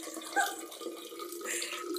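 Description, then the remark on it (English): A steady stream of water pours into a metal bottle, filling it all the way to the top, a continuous splashing gush with a faint ringing resonance, with no voices over it. “No, it's one of the metal bottles where I can't.”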